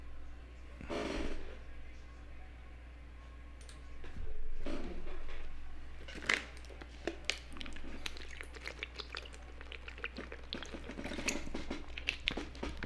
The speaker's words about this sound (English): Yeah, had to get a quick swig of water.